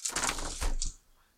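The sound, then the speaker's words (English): A quick burst of hard clattering as dice, including a red die, tumble across a tabletop, a rapid series of sharp clicks and knocks lasting about a second before settling into quiet. “That red dice isn't very good.”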